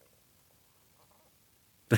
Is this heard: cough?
yes